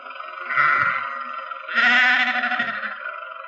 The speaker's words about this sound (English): Confound that man with his sheep. Does he have to take up the entire road?